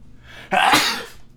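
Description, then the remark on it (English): A single loud sneeze bursts out sharply after a quiet moment, with a breathy, explosive rush of noise that trails off over about half a second. “Hold on, I have to sneeze.”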